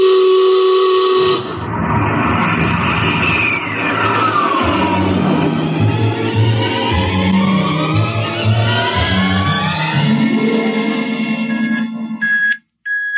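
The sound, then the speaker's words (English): A rocket ship blasting off on the navigator's signal: a loud, sustained roar with a deep rumble and layered whistling tones that sweep and rise, lasting over ten seconds before cutting out abruptly, with no talking. “Prepare to blast off on navigator's signal.”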